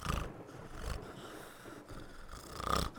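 A person snoring heavily, with several rough, rasping breaths repeating in a slow, steady rhythm. The snores sound close and fairly loud, with no talking.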